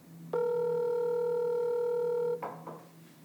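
telephone call ringing tone

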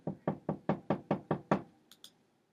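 knocking on a door

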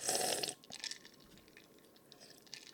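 sipping a drink

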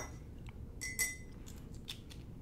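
glasses clinking

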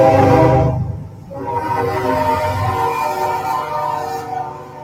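passing train with horn

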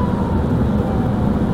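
emergency vehicle siren passing

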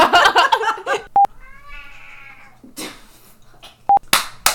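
cat meowing

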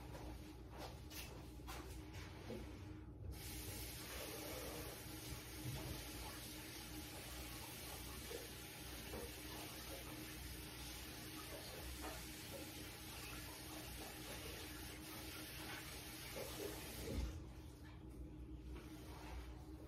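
water running

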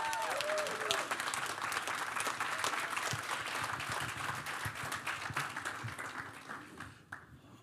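audience applause and cheering

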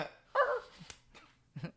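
dog

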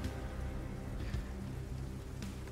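rain falling

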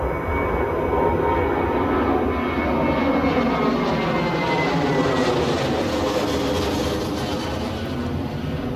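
airplane jet engine

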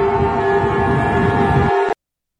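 car horns honking

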